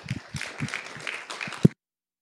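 A church audience gives a guest speaker a short burst of applause, a dense patter of overlapping claps with one sharper, louder clap near the end before it cuts off abruptly into silence.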